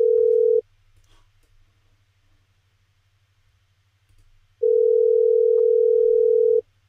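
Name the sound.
phone call ringing tone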